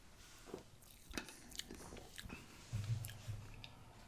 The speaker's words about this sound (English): It is, so this is brewed with Simcoe, Citra, and Mosaic hops. So let's go in here and take a sip. Ready?